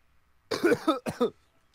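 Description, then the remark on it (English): Two short, throaty coughs in quick succession, moderately loud, with quiet before and after and no talking. “Cough, cough.”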